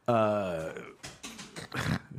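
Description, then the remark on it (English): A dog lets out a drawn-out, harmonic growl, followed by several bursts of scuffling and shuffling as it dances around. “There's a dog dancing on the podcast, if you hear that.”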